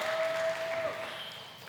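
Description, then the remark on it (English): A church audience in Kenya claps for themselves during the first service on a rainy morning, a dense, steady wash of applause, with a thin sustained tone running beneath it for the first half before the clapping gradually thins out. “Clap for yourselves.”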